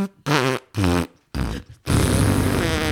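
Someone blows a loud series of fart noises with their mouth: three short buzzy blasts with wobbling pitch, then a longer, rougher raspberry that trails on to the end.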